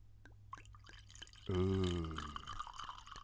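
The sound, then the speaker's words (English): Sicilian rosé wine (Nerello Marcalese) glugs out of a bottle into a glass, a loud pour starting after a few faint clicks, its hollow tone rising steadily as the glass fills. “But have a listen to this. Yeah, glug away.”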